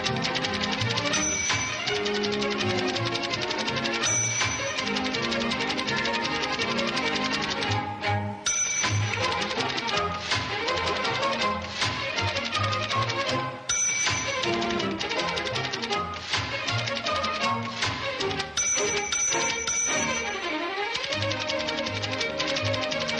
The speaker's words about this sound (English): That's our email music. The Typewriter is the name of that particular song.